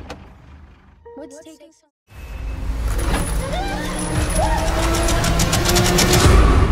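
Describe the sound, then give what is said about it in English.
A heavy tow truck rumbles in loudly after a brief pause, its engine roaring and rising in pitch with a hiss like air brakes, growing louder as it pulls up. “How much longer do you think we have to wait for this tow truck?”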